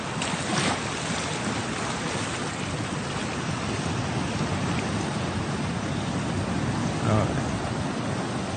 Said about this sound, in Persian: صدای دریا آدم همیشه سرحال بود، ولی هیچ صدایی صدای دریایی کاسپیان خودمون و خلیج فارس خودمون نیست.